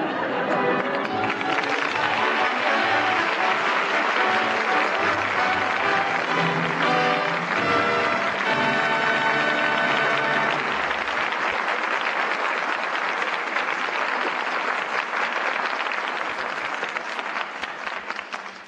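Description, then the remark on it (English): A theater audience applauding as the curtain falls on Father Was a Fullback, calling back its stars Maureen O'Hara, Paul Douglas and Betty Lynn: a steady, dense wash of many hands clapping that holds loud and even for the whole stretch before easing slightly at the end. “The curtain falls on Father Was a Fullback, and that well-deserved applause calls back our stars, Maureen O'Hara, Paul Douglas, and Betty Lynn.”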